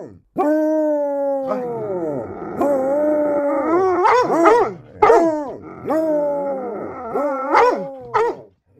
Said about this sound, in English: Because you've heard the enthusiastic woofing, that means we have a guest.